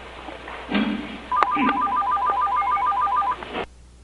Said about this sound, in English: Phone. Shut up.